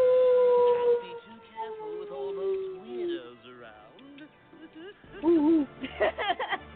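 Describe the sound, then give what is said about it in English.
A person lets out a long, wavering wolf-like howl that slides slowly downward for a few seconds, then voices follow with lively, animated talk. “Want to howl?”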